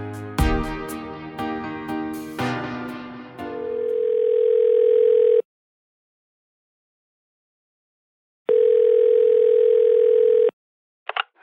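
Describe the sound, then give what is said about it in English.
A short bright musical chime gives way to a steady telephone tone, sounding as two long, loud beeps separated by a few seconds of silence, then a faint click as the line connects on a call with an old acquaintance from Corntown. “Our resolve to make a sequel to our award-deserving podcast solidified after receiving a phone call from an old acquaintance from Corntown.”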